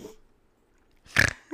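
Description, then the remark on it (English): After a stretch of near silence comes one loud, raspy snore, a short rough snort lasting a fraction of a second. A brief voiced sound follows right at the end. “You and this snore.”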